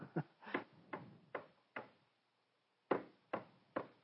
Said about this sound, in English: He kept hearing four knocks and then a pause. Four knocks and then a pause. Four knocks and then a pause. Four knocks and then a pause.